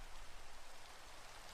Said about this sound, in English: Rain surged, and it became very difficult to see in the misty gloom. "Hello?" came a distant call, barely audible over the loud roar of the rain.